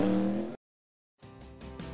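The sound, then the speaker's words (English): A loud, buzzing race car engine roars, cuts off for a moment of silence, then returns as a harsh, high-revving whine with rhythmic surges as the car leaves its pit stop after side service and a second can of Sunoco fuel, accelerating hard through gear changes. “Side service complete. Second can of Sunoco fuel in. He's down and away.”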